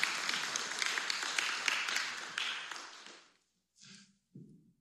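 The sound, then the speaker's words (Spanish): A crowd applauds, with steady, dense clapping for about three seconds before it abruptly dies away. A couple of brief, soft rustles follow in the near-silence. “Bueno, dan un fuerte aplauso a ellos, muchas gracias.”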